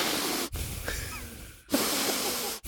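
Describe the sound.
A voice imitates intense nose breathing: three loud, rushing, hissy breaths, each lasting about a second, separated by short abrupt pauses, with no talking.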